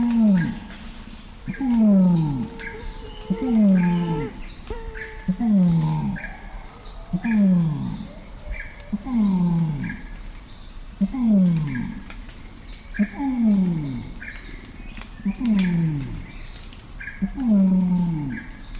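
An orangutan's long call in dense forest: a series of about nine loud, deep, groaning pulses, each sliding downward in pitch, repeating every two seconds, with faint bird chirps in the forest.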